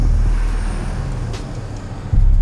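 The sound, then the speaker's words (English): Heavy, booming bass pounds from a car's speakers, making the car's trunk rattle with a buzzing shake of loose panels. Loud, with a low surge near the end and no one talking. “You can actually hear the trunk like rattling.”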